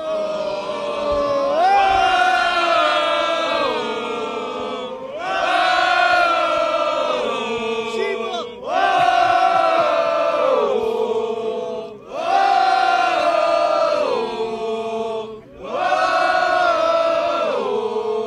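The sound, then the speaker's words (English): A huge arena crowd at Monday Night Raw sings along in unison to Seth Rollins's entrance song as he walks to the ring, a loud wordless melodic chant repeated in about five sustained phrases with brief dips between them. “Now I'm going to walk to the ring, and I'm going to get everyone to sing my song.”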